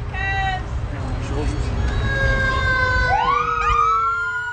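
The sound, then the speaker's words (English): A new fire engine's siren blares loudly as it drives off a ship down a ramp in Petersburg. Steady harmonic wails are joined by rising sweeping tones near the end, and the sirens of other fire trucks in a parking lot answer it, several alarms overlapping above a heavy rumbling engine background. “Engine number 2 trundles off the ship, sounding the alarm.”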